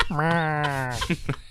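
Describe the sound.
A person imitates a horse's neigh: one sustained, wavering, nasal whinny lasting about a second, loud, trailing into a few short breathy bursts.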